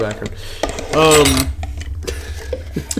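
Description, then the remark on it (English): Light metallic clinks of cutlery against dishes, scattered irregularly over a low steady hum, with a louder harmonic ringing scrape in the middle; moderately loud. “Never mind the clinks.”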